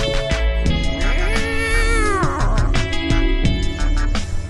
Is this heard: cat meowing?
yes